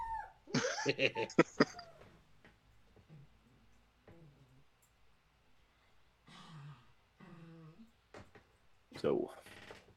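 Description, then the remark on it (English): Pet dogs let out a quick cluster of sharp barks at the start, then quieter whimpering and whining follows, with one more yelp near the end. “Stupid dogs.”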